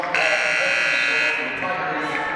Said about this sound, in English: Then she gets tied up, and we're going to get a whistle and a jump ball called.